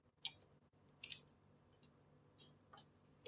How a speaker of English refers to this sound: Sorry, just having a drink of water. Stay hydrated, kids.